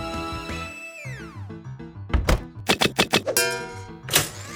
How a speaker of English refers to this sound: Now, evil Mr. Lintball, we've talked about this. Please do not put a baseball in the blender. I like the way a baseball in a blender sounds. Can I do it again?